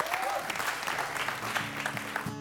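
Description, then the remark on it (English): A church audience at One Cause Church applauds steadily, giving the Lord a hand clap for his word after the message, dense overlapping hand claps continuing without pause with a faint hum of voices beneath. “Would you give the Lord a good hand clap for his word?”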